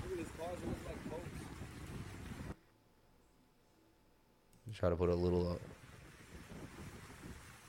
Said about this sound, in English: This is this morning. Sorry about the wind.